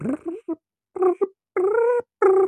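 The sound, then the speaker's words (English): A voice imitates a giant grasshopper's back legs rubbing together with a series of about six whiny, buzzy vocal bursts, short at first, then longer sustained squeals with brief gaps between them. “And then its back legs are like sort of rubbing together like a.”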